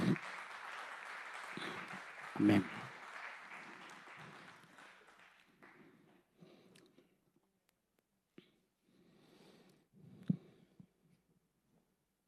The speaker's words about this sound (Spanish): ¿Sí? Démosle un fuerte aplauso a la palabra del Señor.